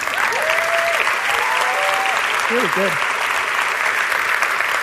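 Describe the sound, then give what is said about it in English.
An audience at a first-year event applauds the organizers steadily, a dense wash of clapping that holds at a constant level throughout, while a couple of voices call out briefly over it. “I can tell you that this is a remarkable execution for a first year event, and so I think we should all collectively clap it up for these fuckers.”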